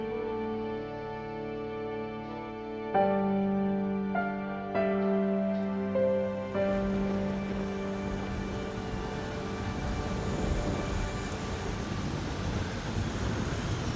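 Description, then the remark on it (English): Sustained, shifting musical chords give way to a steady, dense hiss of heavy rain from a storm over England that builds and fills the second half with constant rushing noise. “This storm pattern is a sign of the planet's equilibrium righting itself.”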